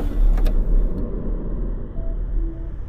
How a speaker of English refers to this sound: So I went back to my car and drove off.